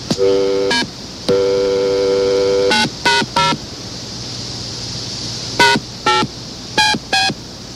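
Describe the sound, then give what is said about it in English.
A phone number being dialed: a run of touch-tone beeps, mostly short and some held longer, with uneven pauses between them. The tones are fairly loud and there is no talking. “All right, let me call her.”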